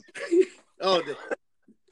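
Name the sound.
coughing and throat clearing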